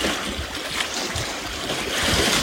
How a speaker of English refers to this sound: Feeling into this surging water. Ice is gone now. Feeling into this power. Becoming this power.